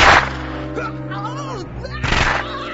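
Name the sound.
gunshot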